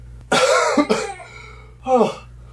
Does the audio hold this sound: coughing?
yes